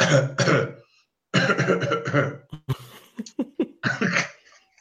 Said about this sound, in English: All right. I do a cough.